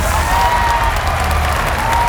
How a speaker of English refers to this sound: And please give a round of applause to my campaign manager, Snakebite Sue.